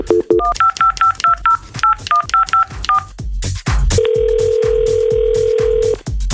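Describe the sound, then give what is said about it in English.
A rapid string of touch-tone dialing beeps, about a dozen short dual-tone pulses in quick rhythm, followed by a steady two-second ringback-style tone on a radio show's phone line, as a random line picker calls a listener to pick a winner, with no talking. “All right, we're doing the random line picker on the phone line again here.”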